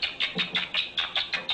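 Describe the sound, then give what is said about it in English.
Rats chirp during roughhouse play with each other, tumbling and tickling, in a quick, steady series of about eight bright, high-pitched bursts, evenly spaced and fairly loud, with no voices alongside. “They tumble, they engage in roughhouse play, which produces a tickling effect, says Yak Panksepp, and lots of chirping.”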